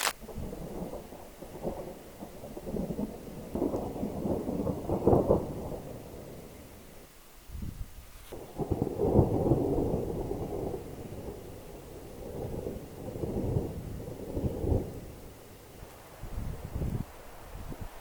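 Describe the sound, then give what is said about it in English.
A thunderstorm over a high ridge top, with steady rain hissing throughout and deep, rolling rumbles of thunder that swell and fade, including a long low roll in the middle. No one speaks. “So I'm going to let this storm blow over before I take off and go for a hike.”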